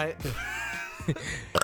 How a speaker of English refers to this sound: Oh my god. Burp so hard it hurts your esophagus.